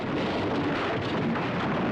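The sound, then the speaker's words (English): A loud, continuous rumbling roar of a tower collapsing without an explosion, dense and heavy throughout the two seconds with no pause or break, like debris pouring down, and no voices. “Doesn't collapse with an explosion or anything, but a rather satisfying collapse there nonetheless.”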